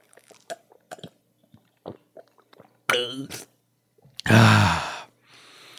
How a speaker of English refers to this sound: So everyone grab your water. Let's all take a sip together.